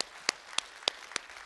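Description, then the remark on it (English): Applause heard as a soft, steady series of about six sharp claps at an even, brisk rhythm, with no voices over it. “Can you guys applaud for just what God did?”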